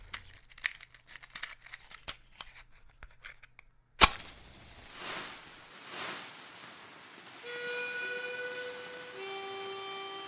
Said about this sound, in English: Mind if I bring my fireworks? I can't see why it would hurt. Let's light a few sparklers for the walk over.